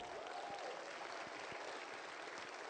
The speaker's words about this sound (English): Give Jesus another great hand clap.